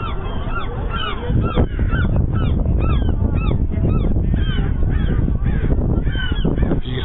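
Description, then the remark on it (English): A flock of seagulls, flocking over something by the water, calls repeatedly, many harsh squawks overlapping in a steady, busy chorus that carries on throughout, with a low rumble of background noise underneath. “There goes a seagull.”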